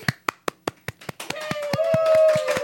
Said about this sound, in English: That was a muted clap. Yeah. I've never heard one. Yeah, there we go. That was a mute.